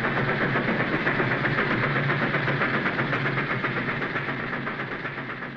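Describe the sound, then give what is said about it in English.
A steady, dense rumble of a train rolling along rails, with a faint rhythmic clatter running through it, loud and continuous before easing off slightly at the end. No one speaks. “By the time we reached Oakland and left the train, I knew I was licked.”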